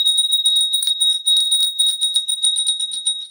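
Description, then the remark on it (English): A small bell rings continuously with a bright, high, sustained tone and rapid shimmering strikes, fairly loud, with no voices. “My bell has been calling to me as well.”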